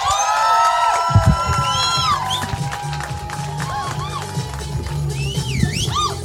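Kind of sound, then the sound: crowd, audience applause and cheering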